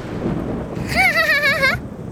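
A deep, continuous thunder rumble rolls through the whole clip, loud, with a wavering, warbling tonal howl rising over it for about a second in the middle, presented as the Thunder Monster shouting in a children's story.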